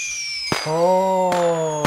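Three sharp fireworks explosions go off about a second apart, loud, with bright whistling, whining tones ringing between and after the bangs.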